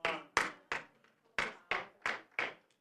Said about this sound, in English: 3 hand claps, that's all that gets?